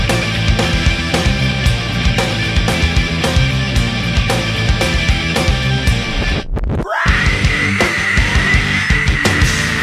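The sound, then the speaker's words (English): A loud, dense rock track cuts out for a split second, then a long, sustained vocal scream rises and holds over the pounding band to the end. “That was a great scream.”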